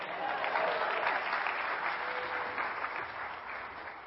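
An audience claps in a steady, dense round of applause lasting several seconds, a bright crackling wash of many hands that holds fairly even before easing slightly at the end.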